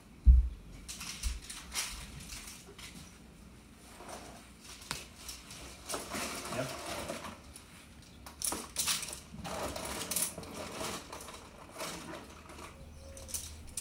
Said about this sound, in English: put these pens away.